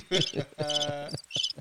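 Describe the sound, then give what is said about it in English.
Three quick chirping bursts of cricket sound, fairly loud, with a buzzy, voice-like tone that suggests someone imitating crickets rather than real insects. “And then you got my your boy crickets.”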